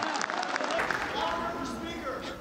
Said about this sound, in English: How lucky we all are, Democrats and Republicans, to be citizens of the greatest country in the history of the world. Guaranteed applause line. Well done.